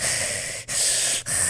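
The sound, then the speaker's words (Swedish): A voice imitates creepy, heavy breathing: loud, raspy, hissing breaths in a steady rhythm, broken by two brief pauses, with no talking. “Han bara står alldeles stilla och sen du märker att någon står där så börjar han andas så här.”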